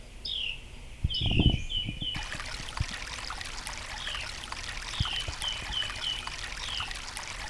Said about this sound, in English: Let's go to the brook now.